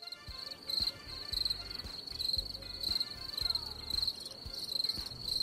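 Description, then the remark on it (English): A steady, high-pitched chorus from a whole field of crickets chirping in rapid, rhythmic pulses, fairly loud and continuous, with faint low thumps and murmuring underneath. “It's a whole field of crickets marching through.”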